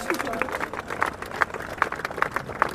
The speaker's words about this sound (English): He received a standing ovation from the crowd after his remarks.